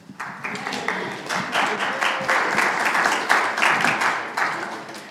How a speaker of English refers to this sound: we can split that applause. Half of that was for you in the announcements, and half of that was for me in anticipation of the sermon.